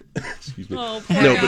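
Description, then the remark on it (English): A throaty sound from a person who is feeling unwell: a short rough throat clearing followed by a louder, raspy voiced cough near the end, with no words spoken. “So on Friday, I started getting a little bit of a coughy situation, and boy, and then...”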